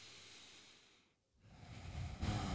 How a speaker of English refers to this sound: And just one deep breath, right?